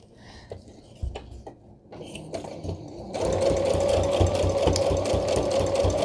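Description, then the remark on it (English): A few scattered clicks and taps in a craft room, then a sewing machine fitted with a regular universal needle starts up and stitches through paper with a steady, fast, rhythmic whirring hum for the final three seconds. No one speaks. “I'm using a universal needle, just a regular needle. Probably one that came with the machine.”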